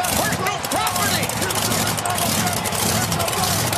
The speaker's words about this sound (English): He's driving into the arena right now in a monster truck. Right to where the funeral's set up. Right up to the ring.